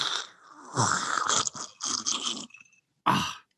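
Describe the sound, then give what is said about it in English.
A series of wet, noisy slurps and mouth sounds from someone sipping whiskey, coming in uneven bursts, then a short pause before one final sip. “And here we go. Sipping away. Sip it.”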